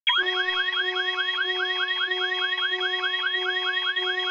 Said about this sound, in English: Okay, warning. There's going to be an alarm klaxon here in a second, and it's loud, so I'm going to turn this down a bit.